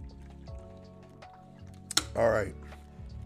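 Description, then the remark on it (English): A brief click, then a single short, wet slurp of someone sipping water, over a steady low hum. “So let me take a sip of my water real quick.”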